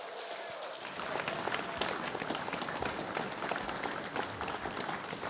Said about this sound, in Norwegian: Kan vi ikke gi dem alle sammen generelt i en stor applaus?